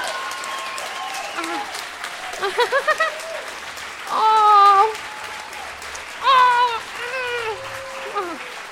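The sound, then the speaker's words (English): An audience claps steadily for several seconds for former show guests who stand up, a dense crackle of many hands, with whoops and high cheering voices rising over it in short bursts. “So if you've been a guest on my show and you're comfortable with standing up, please stand up and let's applaud you for your bravery and your sharing of your info.”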